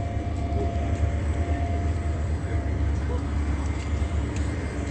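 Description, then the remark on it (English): Ambience at the Fontana Metro train station at 9:49 a.m.: a steady, dense low rumble of idling engines and traffic noise that holds constant throughout, with indistinct background murmur blended into the wash of sound. “It is 9:49 a.m. at the Fontana Metro train station.”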